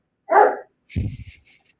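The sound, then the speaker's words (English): A dog barks, one sharp bark followed by a second, rougher bark and a couple of softer trailing yelps, with no talking over it. “Fucker's barking now.”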